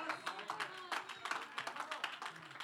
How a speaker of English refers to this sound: Well, I got the hand clap of a few young folks in the house, but I'm going to come at it just a little bit stronger.